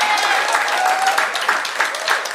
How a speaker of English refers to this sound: Amen? God bless that lady. Yeah, you better clap for my honey.